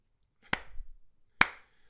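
Two sharp hand claps spaced almost a second apart, a deliberate slow clap with crisp, bright attacks and short decays, heard alone without any talking.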